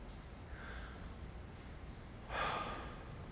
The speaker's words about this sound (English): But when we take a deep breath, it recenters ourselves, that we can press on with whatever's in front of us.